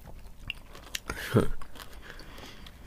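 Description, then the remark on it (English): Quiet chewing on crunchy, sour Skittles fruit candy, with a few sharp crunches scattered through and a louder mouthful of chomping near the middle. “Crunchy outside. These ones a bit more sour.”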